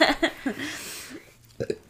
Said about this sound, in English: Why you always gotta burp, man? Dude, that's disgusting.